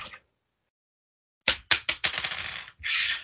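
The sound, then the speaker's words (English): A coin is flipped with a brief metallic ring, then after a pause clatters onto a hard surface with several sharp bounces, a rattling spin, and a final settling shimmer, landing heads. “Let's flip for it, shall we?”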